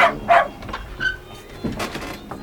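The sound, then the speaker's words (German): A dog gives a few short, sharp barks and yips, spaced unevenly with brief pauses between them, moderately loud, with no one talking. “Darf ich meinen Hund kurz bei Ihnen lassen?”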